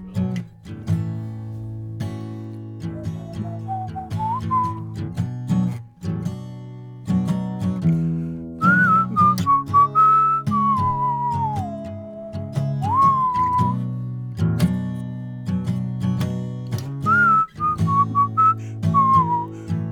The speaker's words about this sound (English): And then there's a fiddle solo if you wanna.